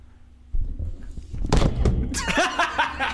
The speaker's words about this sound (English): I tried to knock the table hard enough that the minion will make a noise, and I knocked one of our microphone stands down.